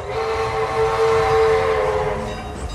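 vehicle, train passing with horn

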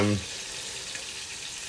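food or drink, chicken frying

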